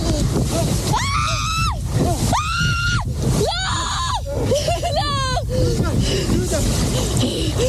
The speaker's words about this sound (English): She's getting it in the water, still screaming. And then starts crying.